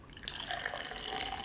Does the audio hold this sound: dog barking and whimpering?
no